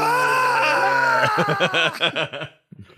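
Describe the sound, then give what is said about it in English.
A person imitates a screaming goat with a long, drawn-out yawning bleat that holds steady, then breaks into wavering, quavering bursts before trailing off; loud, with no other sounds. “Somebody needs to take this GIF and add the screaming goats sound. When he yawns, just like a long drawn out.”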